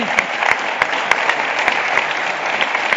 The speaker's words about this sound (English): Ladies and gentlemen, let's give it a round of applause.